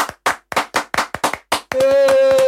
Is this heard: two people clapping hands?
yes